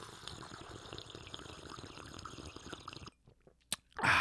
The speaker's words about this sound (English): I will tell you guys this week, my sponsors, Summersbee. Oh, love them. You guys know I do. Slurping away as I do all the time.